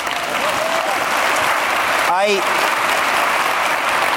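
An audience claps steadily and loudly for several seconds, a dense even wash of applause, with a short whoop rising out of the crowd about halfway through.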